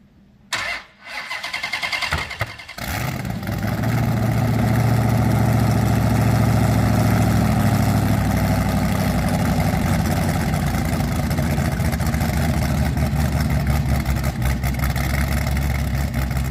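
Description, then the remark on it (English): A big Hemi V8 'Elephant' engine, making 1,000 horsepower and 950 pound-feet of torque on pump gas, cranks over and fires up within a couple of seconds, then settles into a loud, deep, steady idle rumble with no one talking. “It gets its name from the second generation 426 Hemi, which was nicknamed the Elephant Engine due to its size, weight, and power.”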